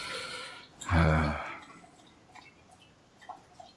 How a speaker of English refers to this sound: And now she's going to slurp her water. It's going to be great.